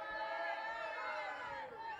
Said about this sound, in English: I want everybody to show a big hand and show your appreciation for my DJ